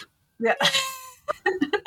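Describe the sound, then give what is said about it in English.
A person voices a drawn-out, cat-like meow, rising and falling in pitch, followed right after by a few quick spoken words in a clear voice. “Now they're definitely going to, because you started it.”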